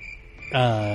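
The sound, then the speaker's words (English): A faint, steady high cricket chirp sound effect plays for about half a second, then a man's voice starts talking over it while the chirping continues underneath. “Crickets.”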